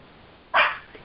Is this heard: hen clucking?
no